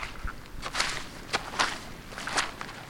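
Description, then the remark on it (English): Squelchy footsteps on wet, boggy sphagnum moss: several soft, irregular steps with a wet, sucking texture, moderately loud, with no talking over them. “That is just gorgeously squelchy.”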